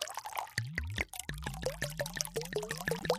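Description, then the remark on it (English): Wine glugs from a bottle into a glass in a quick, steady series of rhythmic gurgles, fairly clear, with no voices. “So he went and got some wine and 2 glasses, and he pours a glass of wine.”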